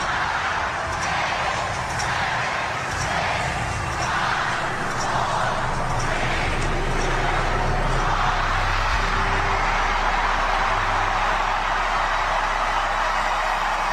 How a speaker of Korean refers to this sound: 뉴욕 맨하튼 타임스퀘어에 전 세계에서 그 카운트다운을 보기 위해서 이제 많은 사람들이 이제 몰려들었는데요. 2024년 카운트다운을 함께 외치는 그 함성 소리 들어보시고요.